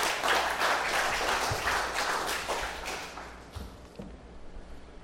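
A room full of people claps for their graphic artist's work in a dense, steady burst of applause that holds for a few seconds, then thins out and fades to scattered claps near the end.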